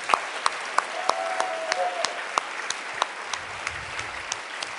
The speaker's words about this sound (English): Give her another round of applause.